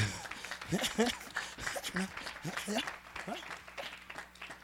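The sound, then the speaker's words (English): An audience claps to Jesus in a dense, continuous patter of sharp hand claps, with voices speaking or calling out over the clapping throughout. “Let's clap to Jesus now.”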